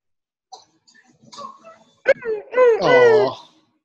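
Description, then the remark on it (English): A dog in a movie scene whimpers: a few soft, scattered whines build to one longer, high, quavering wail near the end, with a brief sharp yelp just before it. “I think that dog must be the best actor in the whole movie.”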